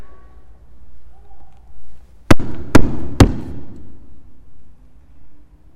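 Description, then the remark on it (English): Doors bang open with three loud, sharp thuds in quick, even succession, each with a brief rumbling tail, after a stretch of faint background hum, as two Sacramento County Sheriff deputies walk in. No one speaks. “Doors fling open, and these two huge Sacramento County Sheriff deputies walk in.”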